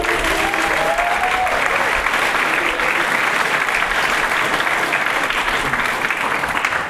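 A crowd claps steadily for about seven seconds, a dense, even wash of hand claps at a constant loudness, with a faint hint of voices near the start.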